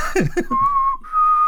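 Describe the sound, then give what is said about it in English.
Someone whistles a Western movie theme: a couple of quick swooping notes, then a long steady held tone that breaks briefly and resumes. No one speaks. “I can't whistle anymore. I was trying to sing the theme to a Clint Eastwood Western.”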